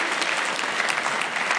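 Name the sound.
audience round of applause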